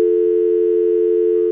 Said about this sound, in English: The dial tone raked into his ear.